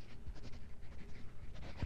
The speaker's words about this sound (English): Let me get this straight. I'm to write my name on a slip of paper. Yes, and underneath any message, question, problem. Mm-hmm. Name. And a message.